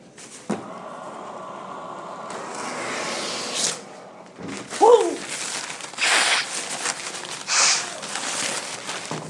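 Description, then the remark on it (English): Paper towels are yanked from a newly fixed dispenser: a sharp clunk, a stretch of papery rustling, then two louder swishing tears and some crumpling, with no one talking. “The paper towel dispenser's fixed.”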